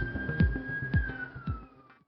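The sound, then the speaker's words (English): A police siren holds a steady high wail that slowly drops in pitch as it passes, while a few dull low thumps land at regular intervals underneath. “Sounds like we got some, let's take a quick break so we don't get interrupted by the siren.”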